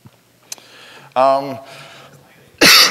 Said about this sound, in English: Try not to cough into the mic.